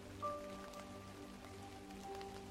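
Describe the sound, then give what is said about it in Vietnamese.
Steady rain pattering on a roof, a dense continuous drumming of drops with a low background hum, no voices, even in loudness throughout. “Tôi muốn chia sẻ với bạn rằng cảm giác nằm đắp chăn và từ từ chìm vào giấc ngủ trong tiếng mưa lộp độp trên mái nhà là một trong những trải nghiệm sung sướng nhất trần đời.”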